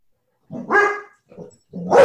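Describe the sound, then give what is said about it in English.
A pet dog lets out a drawn-out, harmonic bark, a short softer grumble, then another loud bark, three vocalizations in about two seconds with no talking. “Wow, my dog has thoughts.”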